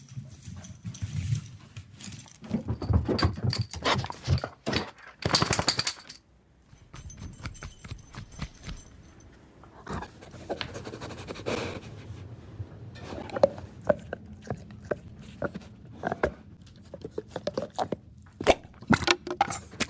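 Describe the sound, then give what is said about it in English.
Sound effects of Champ the dog chewing and tearing at strawberry slime, built by a sound designer from a mix of dog and object sounds: irregular crunching, gnawing and clattering bursts with scattered sharp clicks and rattles, and no talking. “The dog and chewing sounds are a mix of all kinds of dog and object sound effects.”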